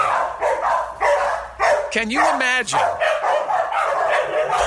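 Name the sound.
small dogs barking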